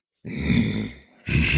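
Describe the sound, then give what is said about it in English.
A person imitates a grizzly bear's growl with two low, rough, rumbling vocal bursts, the first longer, separated by a brief dip, fairly loud and with no talking. “that was a growl.”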